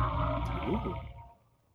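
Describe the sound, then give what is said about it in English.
A video audio cue as a visibly vibrating box passes in front of the camera: a low, dense hum mixed with warbling, chittering calls and a noisy shaker-instrument rattle, panning left to right in stereo, loud and continuous for about a second before fading away. “So there is this hum, but also that it's clearly one of those shaker instrument things, but the hum and the chittering, that is definitely that.”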